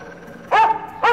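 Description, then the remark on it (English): A dog gives two sharp barks about half a second apart, each loud and clear against a quiet background with a faint steady hum. “Or maybe I'll just have my dog rip your leg off.”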